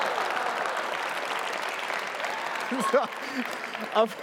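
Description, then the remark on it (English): A crowd applauds the men's basketball team's win over Bethel, a dense wash of clapping that holds for several seconds, with a few cheers and voices rising over it near the end. “Of course, the biggest applause is anti-Bethel.”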